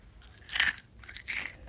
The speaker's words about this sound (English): Now we have a snack to eat while we literally, like, do, like, one of the most boring things. Anyway, share the first satisfying crunch.